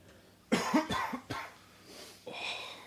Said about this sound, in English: A cough. I see what you did there.